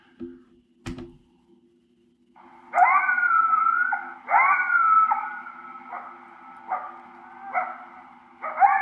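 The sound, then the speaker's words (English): A coyote location call played in the open air on a bright sunny day: a series of rising, wavering high-pitched howls and yips, repeated about six times in quick succession after a sharp click, with a steady low hum underneath. “That's a coyote location call.”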